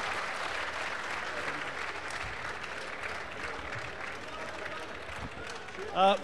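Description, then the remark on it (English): An audience applauds steadily, a dense wash of clapping with some cheering mixed in, holding an even level throughout before a brief voice breaks in at the very end. “So this audience, I understand that you know, every time Kashmir is being humiliated, you cheer a lot.”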